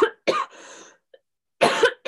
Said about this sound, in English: I'm so sorry. I'm coughing like a sick person.